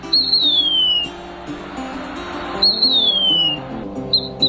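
A Mississippi kite gives thin, high whistled calls that slur downward, two clear ones about two seconds apart and a third just starting, over a low steady background hum.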